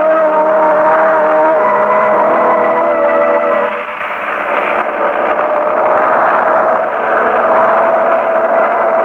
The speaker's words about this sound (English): I've ridden in things more comfortable than this gasoline truck, Mr. Harding. It's good for the digestion